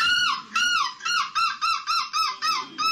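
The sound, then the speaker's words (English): The winning entry at the European Gull Screeching Championship in Belgium: a man from the Netherlands imitates a seagull, letting out about eight loud, shrill screeches in quick rhythm, each one a bright, rising-then-falling squawk, with no talking. “has walked away with the title, and we do have his winning seagull screech here for everybody.”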